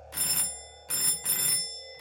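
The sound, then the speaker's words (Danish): A doorbell rings in the middle of the night in Reykjavik in 2004, in three bright, buzzing bursts, each a steady electric trill lasting about half a second with short gaps between, fairly loud and with no voices. “Den 14-årige Tony hørte dørklokken ringe der midt om natten.”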